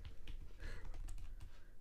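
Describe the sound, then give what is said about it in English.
Rapid keystrokes clatter on a computer keyboard, a steady stream of crisp clicks with uneven rhythm and no voices. “Don't mind my typing.”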